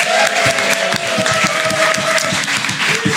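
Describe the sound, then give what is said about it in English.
A crowd bursts into loud, sustained applause for the competing teams, dense overlapping claps filling the whole stretch, with a few faint whoops and cheers mixed in. “Those are the teams. Give them a big round of applause.”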